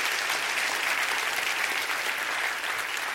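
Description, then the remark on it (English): A crowd at a worship service applauds, clapping their hands for Jesus, with steady, dense clapping that holds at an even loudness for the full few seconds, a continuous wash of many hands with no voices standing out. “Can you clap your hands for the Jesus that we worship in this house?”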